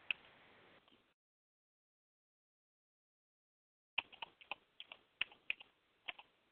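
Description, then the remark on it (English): Typing on a computer keyboard: a short burst of clicky keystrokes, a few seconds of silence, then a quicker, irregular run of sharp key taps. No one speaks. “Typing.”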